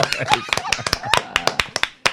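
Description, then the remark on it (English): Hand clapping to welcome a guest back to a show: roughly a dozen sharp, bright claps in an uneven, scattered rhythm, as if from a few people, with faint voices murmuring beneath them. “He always starts, we forgot the claps.”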